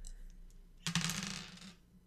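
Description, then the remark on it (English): Dice are rolled on a table, clattering and rattling in a quick burst of clicks lasting under a second, fairly loud, then settle into quiet. “So if everyone can please roll 2d6 for me. I have my d6.”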